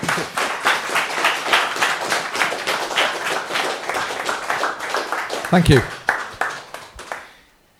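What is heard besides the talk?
audience round of applause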